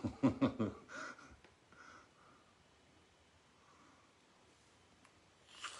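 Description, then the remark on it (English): Heavy breathing into a microphone: a quick run of loud, snorting breaths at the start, then near silence, with one faint breath at the very end. “The Scottish only breathing.”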